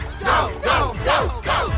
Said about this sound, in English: You hear that? They're cheering for you.